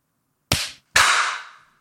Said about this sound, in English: So it is currently, I have 749.36, so I'm going to hunt for 749.50. We're all going to clap at 749.50. Great. Everyone ready?